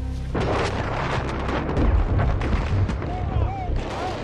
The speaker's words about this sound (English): As Hotel Company move cautiously through the outskirts of Daido, gunfire erupts.